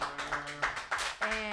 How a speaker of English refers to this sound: Thank you so much, everybody. Clap wildly for